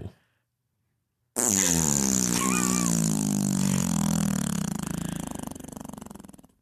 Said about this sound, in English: The fart noise.